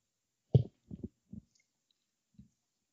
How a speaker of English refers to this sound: Let me get a sip of this whiskey here.